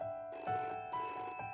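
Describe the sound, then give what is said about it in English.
A telephone at a workplace rings with a bright, trilling electronic tone in short repeated bursts, clear, with no voices over it. “Suzy had taken a phone call at work, a prospective buyer interested in one of the properties she had for sale.”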